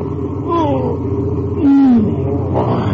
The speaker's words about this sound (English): It is 1:10 a.m., May 17th, 1948. The highway across a barren and thinly populated portion of West Texas is deserted, except for a truck and trailer pushing steadily westward toward El Paso.